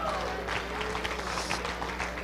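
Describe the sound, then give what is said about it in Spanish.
A crowd applauds steadily on this night, giving applause in praise of God: a dense wash of many hands clapping at an even loudness, with a low steady hum underneath and faint voices mixed in. “Regálenle un aplauso en esta noche.”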